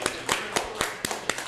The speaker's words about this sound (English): Speaking of caps, by a round of applause, this year, can we start a brim Dayton society? Because I see some cold hats in here. Clap it up.